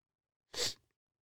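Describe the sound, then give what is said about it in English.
A single sharp, breathy sniffle, one quick burst of hissy nasal noise lasting under half a second, fairly loud and standing alone with silence around it. “Sorry, I had to stop for a second to sniffle.”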